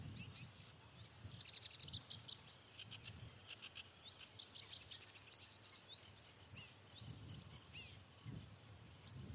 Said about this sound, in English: Much faster, urgent call than the slightly more languid reed warbler. Some people have stopped to look at me. Looking at a sedge warbler.